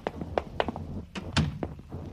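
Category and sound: household object, door being shut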